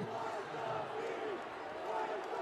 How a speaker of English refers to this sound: The Kings fans down below us, we hear you. We hear you. Light the beam.